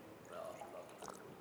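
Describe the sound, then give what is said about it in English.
A short, quiet pour of drinking water into a glass, with a faint rising gurgle and trickle lasting a second or so, with no one speaking over it. “I could have a water anyway, so that's it's going to suit me. Who else wants a drink of water?”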